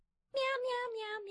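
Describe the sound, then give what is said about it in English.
A person imitates a cat with a drawn-out, nasal meowing voice, a single continuous call with slight pulsing, fairly loud after a brief silence. “Meow meow meow meow. I'm just teasing.”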